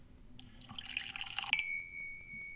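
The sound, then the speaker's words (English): A bottle opens with a burst of fizzy, bubbling noise, then one sharp glass clink rings out clearly and fades away. No voices, and the sounds are moderately loud. “Pop clink. Pop clink.”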